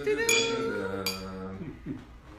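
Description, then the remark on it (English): Two bright, fairly loud glass clinks, each leaving a lingering ringing tone, with soft voices murmuring underneath as a toast is shared. “Alright, cheers! Cheers!”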